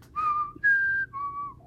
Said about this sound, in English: I heard nothing for a moment. Then the tune of Jeopardy being whistled.